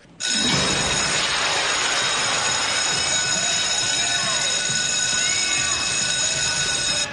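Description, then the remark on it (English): A harsh, buzzing doorbell rings loudly and without a break for about seven seconds, steady high-pitched tones layered over a rough, grinding metallic rattle, with no talking. “And this is the worst doorbell in history.”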